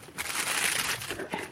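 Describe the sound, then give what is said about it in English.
A discarded crisp packet being picked up as litter by a footpath, a burst of sharp, crackly crinkling that keeps up for about a second and a half, fairly loud, with no voices over it. “We've got a crisp packet. A water bottle.”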